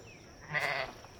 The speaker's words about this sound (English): So you're out here petting sheep now.